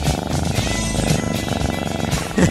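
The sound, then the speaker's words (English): A studio cat purrs right up against a studio microphone, a loud, steady low rumble with soft rustling and brushing noises layered on top, as if the animal is rubbing against it. “For some reason, the studio cats are all over the microphones today.”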